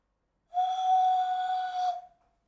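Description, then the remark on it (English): A single sustained whistle, steady and loud for about a second and a half, a person imitating the low horn blast of a conch shell, with no talking. “I can whistle like a conch.”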